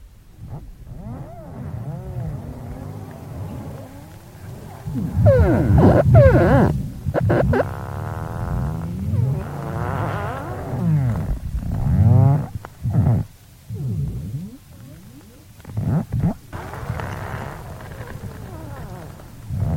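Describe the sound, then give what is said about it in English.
Large ice floes rubbing and scraping together creak and groan, recorded underwater with hydrophones beneath an ice shelf, in a long, continuous sequence of low, moaning tones that bend and slide in pitch, with deep rumbling swells and brief crackling bursts between them. “They rub and scrape together and make these creaking, groaning and bubbling sounds, which I've recorded underwater with hydrophones underneath the ice shelf.”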